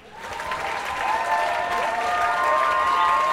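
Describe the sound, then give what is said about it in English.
Canned audience applause swells in quickly and holds steady, a dense wash of clapping with faint cheering whistles layered through it, loud and sustained without any talking. “I know none of you are real, but that doesn't make that sweet, sweet applause feel any less enjoyable.”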